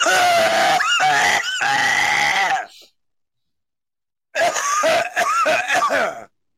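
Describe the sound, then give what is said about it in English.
A loud coughing fit full of honking, wheezy gasping inhales, coming in two long bursts split by a short silence, sounding almost like a goose. “You're not even coughing. You're just inhaling. There it goes.”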